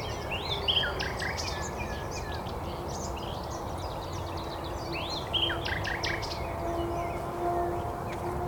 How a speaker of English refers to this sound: Nightingales having to compete with a bit of road noise.